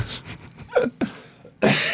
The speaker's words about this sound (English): You made me laugh so hard I coughed.